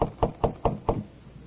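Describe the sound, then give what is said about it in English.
Five sharp knocks on the door of apartment number 7, on the third floor of a modest downtown apartment house in a West Coast city, in late afternoon, as a tall, well-dressed man knocks in a steady, even rhythm, each a dull wooden thud, followed by quiet with no voices. “He walks down the hall to the door of apartment number 7. He knocks.”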